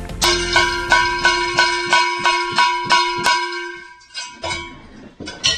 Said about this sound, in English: I got the cowbell. I don't have fever. I got a cowbell. And the only prescription is more cowbell. I got a cowbell. I just don't have any rhythm.